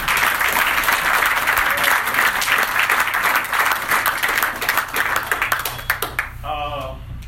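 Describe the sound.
An audience applauds steadily for about six seconds, a dense wash of many hands clapping at once, before the clapping thins out and a single voice starts speaking.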